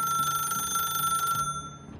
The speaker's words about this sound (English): But before she could even glance outside, the phone rang again.